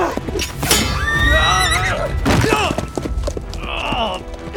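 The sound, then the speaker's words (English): A horse whinnies loudly, a shrill wavering neigh followed by further shorter whinnies, over a busy background of low thumps and commotion. “Blast your horse!”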